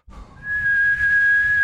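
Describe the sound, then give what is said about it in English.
A kettle whistles with a steady, piercing high tone that holds unbroken, rising out of a low rumbling boil that swells in the first moments. “The kettle's on.”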